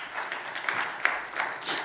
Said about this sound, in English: Can we just give God a round of applause this morning? Let's do so.